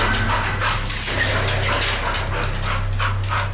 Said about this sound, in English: And it runs out when I open that door, and it goes to that corner and just goes nuts, like growling, kind of barking a little bit.